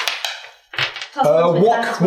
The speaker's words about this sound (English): Okay. Oh shit! Dice everywhere.